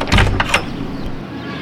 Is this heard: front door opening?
yes